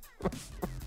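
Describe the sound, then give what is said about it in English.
A person imitates a cow mooing, making a few short, low, throaty voiced bursts, with no other talk. “Is … doing the cow there? Yeah. That's his cow.”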